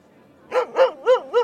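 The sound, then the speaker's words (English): A dog barks four times in quick, even succession, each bark short and fairly loud, after a brief quiet moment with faint background noise. “hands a scrap of bread to Boy, his dog”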